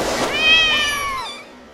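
A single long, drawn-out cat meow, fairly loud, its pitch bending upward then sliding down before trailing off, with no talking around it.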